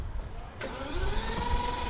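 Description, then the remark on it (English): A steady low engine rumble fills the interior of a BMW Hydrogen 7 car waiting for other cars to go ahead, then a louder whooshing whine swells in partway through and holds, like an engine revving up and running. “Okay, so we're in the BMW Hydrogen 7. Yes. Yes, and we're waiting for all the other cars, apparently, to go before us.”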